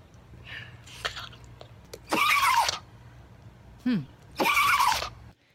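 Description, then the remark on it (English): A 19-year-old rat terrier sneezes twice, each a loud, harsh, wheezy burst lasting under a second, with a short snort between them and faint snuffling before. No one speaks. “Maggie is a 19-year-old rat terrier.”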